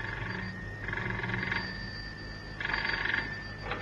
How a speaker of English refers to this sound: Cannon had hardly put the phone down in the house in Sloane Street when it rang.